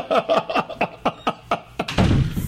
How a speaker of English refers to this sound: Every time you hear the door slam